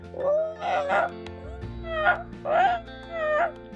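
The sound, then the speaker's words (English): A hungry sea otter pup, floating on its back in cold waves, cries out for its mother in about five shrill, wavering squeals, spaced in uneven bursts, loud and clear with no voices over them. “He is anxious for Mother to return and begins to make crying sounds to call for her.”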